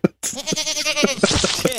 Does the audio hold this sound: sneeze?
no